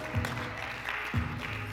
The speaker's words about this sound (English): Good to hear that clapping.